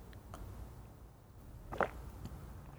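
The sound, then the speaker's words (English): A tiny sip of liquid followed by a soft swallow, quiet, with two brief mouth sounds against a low background hum and no talking. “Wait, that was like a communion sip.”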